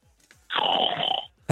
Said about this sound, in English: Yeah, sorry. That was me and a yawn.